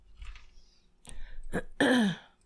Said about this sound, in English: People are tuning out because I keep clearing my throat. I apologize. Getting old ain't fun.